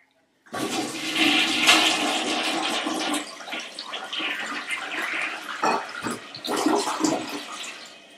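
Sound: toilet flushing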